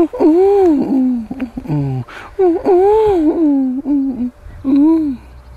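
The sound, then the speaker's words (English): A person voices a series of throaty, swooping coos imitating a pigeon trying to seduce another pigeon, several warbling phrases fairly loud, with brief breathy pauses between them. “For my next trick, that was my impression of a horny pigeon.”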